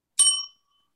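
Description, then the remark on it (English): A single bright bell ding rings out clearly, with a sharp metallic strike that fades quickly over about half a second, leaving a faint lingering tone before silence. “I think that your version of your, I guess, Peggytopia sounds pretty good, so I'm going to give you a bell.”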